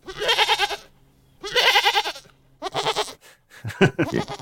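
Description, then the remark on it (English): A goat bleats loudly several times in quick succession as an inserted sound effect, each cry wavering and nasal, with brief pauses between the calls and no talking. “could you put a noise of a goat here?”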